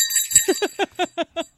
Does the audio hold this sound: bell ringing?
yes